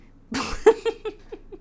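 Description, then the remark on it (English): A single sharp sneeze bursts out, followed by a few quick, fading breathy catches that trail off into quiet. “Bless you.”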